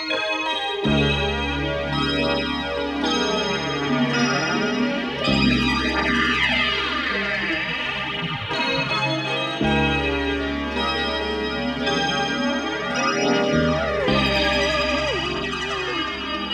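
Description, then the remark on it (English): A song's intro: a dense, swirling wash of synthesizers and keyboards with a flanged, sweeping gong shimmer, sustained chords shifting every few seconds over a steady low drone, loud and continuous with no talking. “The song opens with a wash of synthesizers and keyboards and a gong with a flanging effect on it.”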